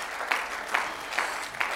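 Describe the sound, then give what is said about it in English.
A church audience claps their hands together unto the Lord after a sermon, a dense wash of applause with a steady underlying rhythm, sharper group claps landing roughly every half second. “Will you clap your hands one more time unto the Lord?”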